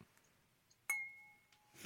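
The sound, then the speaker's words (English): A single sharp clink of glasses in a toast, followed by a clear ringing tone that lingers for about half a second before fading; quiet, with no talking. “That's my cheers. It worked.”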